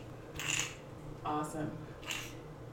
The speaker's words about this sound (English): Oh, my nose is full of toxins. I can hear it squeaking. Hold on. Listen to this, audience.